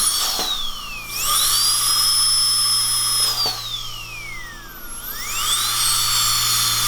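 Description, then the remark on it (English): A high-pitched dental drill in an ASMR recording of dental office sounds whines continuously, its pitch sliding down and sweeping back up as it speeds and slows, with a steady low hum underneath and no voices. “That's just the drill.”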